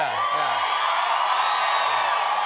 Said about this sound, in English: This is really, you know, it's like way more, like, Letterman was never like this. This is really. Really? They didn't, this, Letterman's no, no, this crowd is raucous.